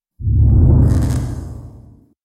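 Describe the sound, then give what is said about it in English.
A single loud whoosh sweeps through, heavy and low with a bright airy top, rising sharply then gradually fading out over about two seconds, with no voices. “free energy is a little beyond the boundaries of the show, and we're running long, so whoosh.”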